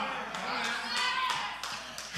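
A series of quick, evenly spaced knocks on a door, about six raps in a steady rhythm, over a hissy, busy background.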